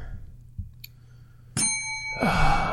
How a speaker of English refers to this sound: stupid bell.